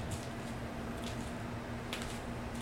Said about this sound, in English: there's Joe doing the mic switch